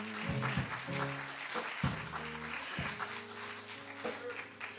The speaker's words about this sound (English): If you love the Lord, clap your hands and give God praise.